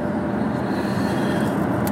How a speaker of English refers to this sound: Wow, a lot of traffic going south here on the 101 going into Hollywood. Glad I'm not going that way.